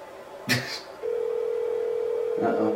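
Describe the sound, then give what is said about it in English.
After a brief clatter, an outgoing phone call's ringback tone sounds as one long, steady, unbroken ring at moderate volume, with faint voices murmuring near the end. “It's a long ring.”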